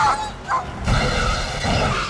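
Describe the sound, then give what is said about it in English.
A dog barks as a sound for the dog van from the film Dumb and Dumber jumping over a hill in the road: two short, sharp woofs, then a longer, drawn-out bark that trails into a yowl, fairly loud with no other sounds around it. “I don't know, Steve, how you're going to find the sound for this one, but the Dumb and Dumber dog van. Jumping over the hill in the road.”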